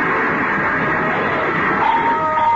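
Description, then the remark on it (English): A gray coupe skids through a changing traffic light and crashes into a lamppost, breaking it off, in a loud, continuous wash of harsh noise, with a high tire screech rising near the end. No one speaks. “They hit the lamppost, broke it off.”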